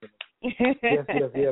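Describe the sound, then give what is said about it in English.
Two quick, sharp hand claps from one person, then a voice breaks into drawn-out, sing-song vocalizing that carries on after the claps stop. “Applause, hurry up and get on here. Ooh, yay. I'll do it myself. I'll do it manually.”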